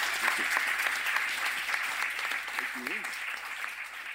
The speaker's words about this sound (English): So that's it from me. Thank you very much to everyone for coming down, and a massive round of applause to our guests.